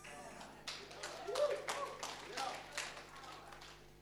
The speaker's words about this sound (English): Yeah, you can clap.